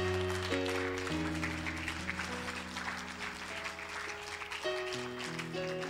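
A church crowd claps for the Lord Jesus during a sermon, steadily and densely for the whole stretch, the applause layered over sustained organ-like chords that shift every second or so.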